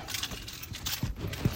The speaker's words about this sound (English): grab my keys, grab my stuff. So, I forget how loud it is.